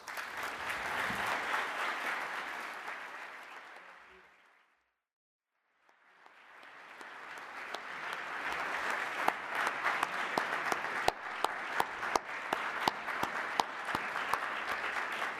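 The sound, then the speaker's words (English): A crowd claps steadily, the applause fading to silence for a moment before swelling back up into dense, sustained clapping with sharp individual claps standing out. “We will give them another round of applause at the end of the act”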